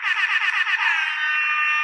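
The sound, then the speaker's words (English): An air horn sound effect, played for the audience by mistake instead of a round of applause, blares loudly, first in a quick fluttering series of blasts, then holding one steady, shrill tone for about a second. No one talks over it. “Oops. That was air horns.”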